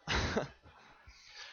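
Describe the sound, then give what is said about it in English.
A single sharp, forced cough, made while pretending to choke in a Heimlich maneuver demonstration, bursts out loud and harsh at first, then trails off into quieter breathy rasps and a faint throaty sound. “Okay, so let's pretend like you're choking. So cough, oh, there it is.”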